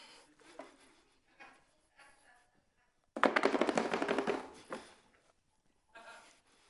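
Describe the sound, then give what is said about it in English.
A quick, loud burst of rapid knife chopping on a board while preparing dinner, with scattered softer kitchen knocks and clatters of dishes before and after, no one talking. “She starts going into Martha mode, preparing dinner, every once in a while peeking at Mary.”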